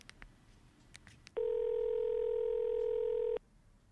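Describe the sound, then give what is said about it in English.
A handful of quick clicks from a phone handset as a number is dialed, then a loud, steady telephone dial tone that hums unbroken for about two seconds before cutting off abruptly. No one speaks. “put the phone down.”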